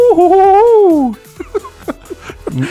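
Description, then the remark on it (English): A single loud owl hoot sound effect, the Lagoon Owl, drawn out for about a second with a wavering, sliding pitch, then trailing off into faint, scattered murmurs and clicks. “Is that the Lagoon Owl? Yes, it's the old Lagoon Owl.”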